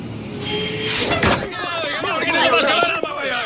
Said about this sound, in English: Look, it's the bus! The bus! Come on, you're gonna miss the bus!